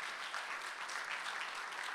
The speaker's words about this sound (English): So we are blessed. And if you believe we are blessed, let's give a round of applause in the name of Jesus.